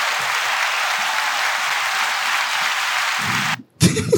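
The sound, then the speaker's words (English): A steady round of applause, dense and even clapping sustained for a few seconds, then cutting off abruptly before a brief burst of noise at the end. “Round of applause.”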